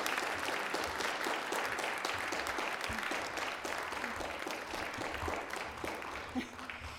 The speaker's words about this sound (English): Didn't they do well? Should we give them a round of applause just to encourage them?